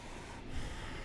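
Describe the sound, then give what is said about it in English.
Forceful, noisy breathing during a yoga practice fills the short clip, a rough airy rush of breath with a snort-like push midway, steady, with no talking. “Now pump air like never before. It's the path to vitality, listening. This is why you want your breath to be audible.”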